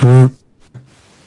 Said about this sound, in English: Why did I echo there? What's going on?